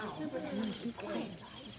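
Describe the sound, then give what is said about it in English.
A few soft, low hooting calls come in short bursts, like someone imitating an owl as a signal in a forest, over a dense, hissy background that sounds like a muffled outdoor scene. “Hear that? What? That owl.”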